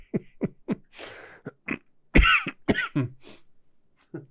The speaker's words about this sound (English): Sorry about the sounds. Gamora's chewing on her yak bone she got for Christmas.